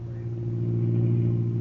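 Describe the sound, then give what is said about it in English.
A car engine hums steadily while driving along the outer drive on a Saturday morning with hardly any traffic, a continuous low droning rumble, with no voices and no change in pace. “You saved the day when you offered me your car.”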